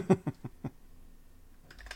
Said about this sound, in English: That's me typing on a keyboard. This is my keyboard. See, my keyboard is reliced. My keyboard's always getting reliced up.